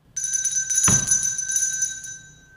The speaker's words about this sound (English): Nice to hear that doorbell again.